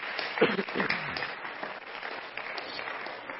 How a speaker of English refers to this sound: Why don't all of our home folks and mothers give all of our guests a good hand clap today?